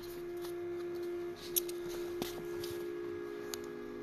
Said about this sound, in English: Turning the page.